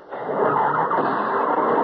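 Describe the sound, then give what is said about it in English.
A car engine turns over and catches, settling into a loud, steady, rough running noise, with no voices. “Road and Charlie's car. Please start. Please.”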